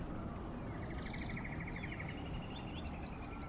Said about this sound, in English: That's the evening rainforest. Which, okay, this does sound like nighttime, right?